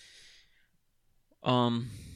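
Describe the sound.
Close to the microphone, a breathy exhale fades out, then after a short pause a loud, drawn-out voiced yawn swells abruptly and trails off.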